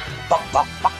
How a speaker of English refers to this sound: Sounds like a scratchy robot chicken.